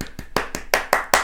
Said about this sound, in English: That was just an encore, just to say how amazing this experience was. I felt like we needed some type of clap sound effects, so I just being creative, you know.